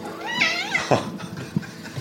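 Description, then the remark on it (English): A fluffy white Persian cat on a porch lets out a loud, drawn-out meow, its voice rising and bending in pitch, followed by a shorter second call and a brief soft thump. “You've got a loud meow.”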